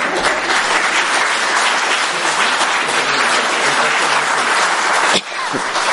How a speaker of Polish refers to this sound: A oni dalej klaszczą.